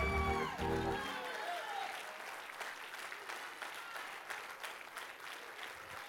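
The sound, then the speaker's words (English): An audience bursts into sustained, dense clapping that continues steadily for several seconds, following a brief moment of a raised voice at the start. “Do not clap if you are a racist.”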